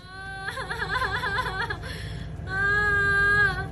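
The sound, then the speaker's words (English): A woman in a 7-Eleven, protesting a bear's presence in the store, cries out in a high, wavering wail, sobbing in two drawn-out bursts separated by a brief catch of breath, fairly loud with faint background noise. “Why are you crying like Rittenhouse on the stand, ma'am?”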